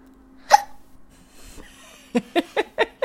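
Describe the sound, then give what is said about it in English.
A loud, sharp hiccup, then a quiet pause before four more hiccups in a quick, even rhythm, each a short voiced gulp with no talking. “That was a huge hiccup.”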